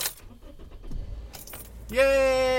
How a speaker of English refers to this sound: We get into our car. We belt ourselves in.